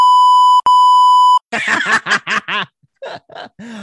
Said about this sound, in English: Are you going to beep that out? I'll put another beep in. I had to find enough beeps for your wretched mouth.